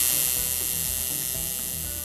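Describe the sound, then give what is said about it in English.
A loud, steady grinding buzz from a buzzsaw-like machine, used while making a small kitty figure, runs continuously for the whole moment, harsh and hissy up high with a faint rhythmic pulsing underneath and no voices. “Yeah, do you like that sound? The grinding of the buzzsaw?”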